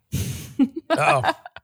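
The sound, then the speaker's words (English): A voice mimics the heavy breathing of a prank caller phoning at night: a long noisy exhale followed by a raspy, voiced breath and a few short huffs, fairly loud, with no words spoken. “Heavy breathers at night, huh?”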